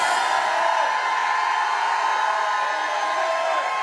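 A large church audience roars with loud, sustained shouting and whooping in response to a preacher's call to shout, a dense wall of voices that holds steady for the whole few seconds without a pause.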